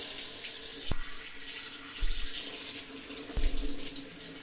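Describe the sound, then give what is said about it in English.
Tap water runs steadily into a large plastic Tupperware bowl used for washing vegetables, a constant hiss broken by a few dull, hollow knocks as the bowl shifts. No one speaks. “And I'm just gonna go ahead and fill this bowl with water.”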